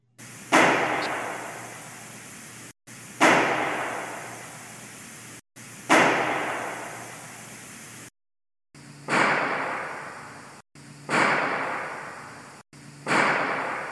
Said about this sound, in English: So it's echoey. You talk in one room, it almost sounds like you're in the next room and it's out in the living room. It's vacant in there. And this sound of the gunshots have an echo to them, which fascinated me.